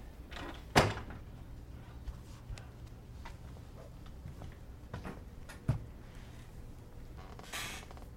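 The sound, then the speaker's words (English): A door swings shut with a solid thud, followed several seconds later by a second, softer knock, with faint rustling in between and no voices. “Shut the door, will you?”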